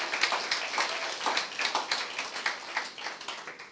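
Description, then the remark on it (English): A church audience in Cork City Centre, Ireland, applauds its non-nationals steadily, many overlapping hand claps forming a dense, continuous patter at a moderate level with no voices standing out. “Can we give a round of applause to our non-nationals?”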